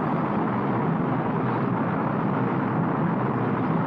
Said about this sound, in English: Still launching. Still watching a rocket launch.